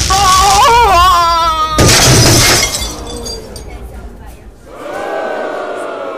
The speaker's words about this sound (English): Zap him with the stun gun. He is resisting arrest. I will zap him at full strength.